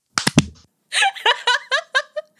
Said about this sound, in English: Okay, ready? Yep. We're going to do 3, 2, 1 clap, right? Okay. 3, 2, 1.